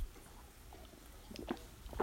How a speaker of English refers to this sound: excuse me, man, I need to get another sip of water.